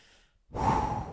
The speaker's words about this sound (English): And sorry if I'm breathing hard, but I had 8 slices of pizza tonight